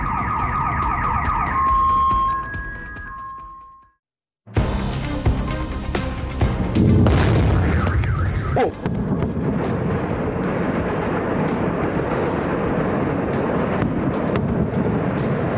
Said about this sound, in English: And cameras capturing explosions in the Ukrainian port city of Odessa overnight.